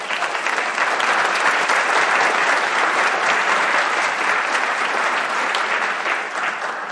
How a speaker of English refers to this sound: So, from all of you who were on the tour, let's have a round of applause.